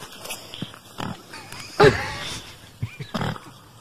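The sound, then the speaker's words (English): Pigs grunt and squeal, one of them an intoxicated pig, with one loud, harmonic squeal standing out midway among scattered snorts and shorter grunts in a noisy outdoor setting. “I gotta get the intoxicated pig.”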